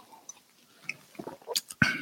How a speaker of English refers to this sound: I'm going to have a sip of my matcha tea.